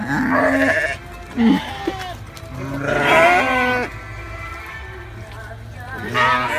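Lambs bleat repeatedly while being fed, in wavering, quavering cries, several calls overlapping, with a loud, long bleat near the middle and more calls trailing off at the end.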